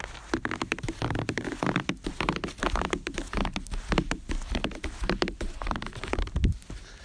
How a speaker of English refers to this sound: It's falling heavily, and this sound I wanted to share with you as I walked across my deck to go in my back door. This is what the squeaky snow sounds like.